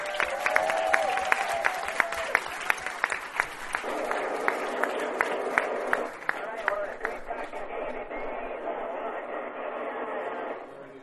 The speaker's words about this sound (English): Let's get a big round of applause from the audience.